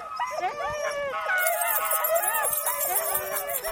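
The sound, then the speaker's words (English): A chorus of excited sled dogs howls and yips together as they get fired up before a run, overlapping wavering cries with sharp barks mixed in, loud, continuous throughout with a faint voice underneath. “You can see in the dogs now, they're starting to get fired up a little bit.”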